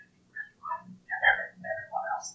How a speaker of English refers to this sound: I think it might just be a bird outside. We have the door open.